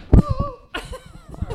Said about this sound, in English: Jonah knocked the microphone off the table. It's the hazards of working with... The cat, I know.